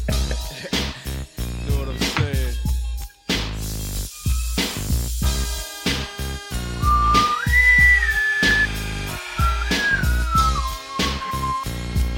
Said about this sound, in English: Are you whistling?